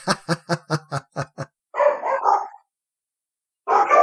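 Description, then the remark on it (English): Dogs bark in a quick run of about eight sharp, evenly spaced yaps, then break into longer rough, drawn-out barks, go quiet for a moment, and burst out loudly again. “Then the dogs freak out, and Rival...”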